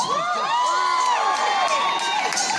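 A dense wall of high-pitched screaming from a large audience at an old live concert recording made in Australia, many overlapping shrieks rising and falling continuously at full volume, with no music audible beneath it.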